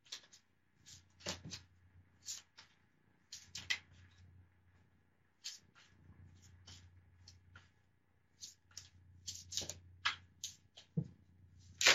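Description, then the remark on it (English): A deck of cards being shuffled, with repeated quick riffling bursts and soft slaps spread over several seconds, no voices. “So I just feel like while we're waiting for her to come back on the show, I might just shuffle some cards and just see what comes up for her.”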